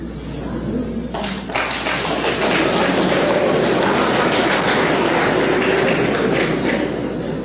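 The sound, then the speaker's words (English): An audience breaks into applause about a second in, a dense, steady patter of many hands clapping at once, staying loud and even for several seconds with no one talking over it. “Now, it's interesting, some clapped and some didn't.”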